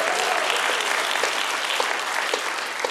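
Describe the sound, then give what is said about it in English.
A crowd applauds for both schools, the Sooners and the Cowboys, many hands clapping in a dense, continuous wash of sharp claps that holds at an even, fairly loud level throughout. “Can we clap our hands for both schools?”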